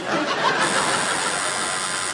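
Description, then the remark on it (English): A quiz show buzzer sounds as a harsh, steady, raspy blare held for about two seconds at an even loudness, with no talking over it. “No, I wish I hadn't buzzed.”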